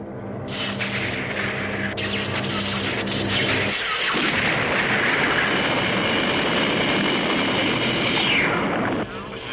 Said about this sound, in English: The other clip from this first episode that I do want to play, though, is when this whole thing happens, when this explosion takes place and the moon is pushed out of Earth's orbit. So listen to this.